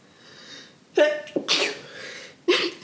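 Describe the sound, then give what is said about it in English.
A person sneezes, a sharp voiced burst followed by a breathy hiss, then a second quick sneeze about a second later; no talking. “That explain why I'm sneezing so much.”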